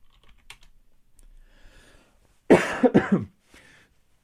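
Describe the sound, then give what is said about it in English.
A loud burst of several harsh coughs in quick succession picked up by a sensitive microphone, following a stretch of quiet clicking like keyboard typing, with one more short cough cut off at the end. “I hope that my coughing isn't blasting in your ears right now because the microphone's sensitive.”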